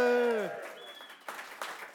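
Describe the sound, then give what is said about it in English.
An audience in the conversation room at the Royal Institution in London cheers loudly. It opens with a bright whoop that slides down in pitch, then gives way to scattered clapping and rowdy shouts that swell in bursts. “We are here at the Royal Institution in London in the conversation room with a very enthusiastic audience. Audience, give us a cheer.”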